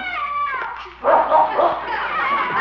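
A bloodhound, having found the neighbor's cat behind a garage, whines and yips at first, then breaks into a burst of loud, rough barking and yelping, excited and nearly continuous for a couple of seconds.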